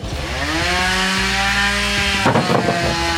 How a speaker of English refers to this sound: the fuel being demoed was powering a chainsaw cutting through this big block of ice